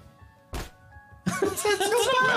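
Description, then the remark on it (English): A single short, punchy impact, a punch sound effect played from a soundboard, thwacks out of near-quiet, followed about half a second later by a dense, noisy burst of voices and commotion that runs to the end. “It's a terrible punch sound.”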